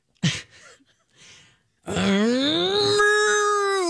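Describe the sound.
A person gives their best cow impression, letting out a long, loud, drawn-out moo that rises slightly in pitch, preceded by a few short breathy sounds.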